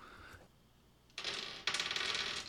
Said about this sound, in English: I believe your character has an arete of 4, so you're rolling 4 dice against difficulty 5. 4d10.